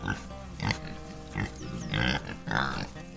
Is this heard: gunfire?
no